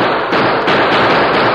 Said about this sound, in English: The Lone Ranger's first volley stopped the outlaws, but only for a moment.